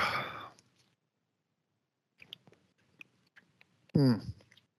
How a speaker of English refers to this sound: I got to take a sip of water.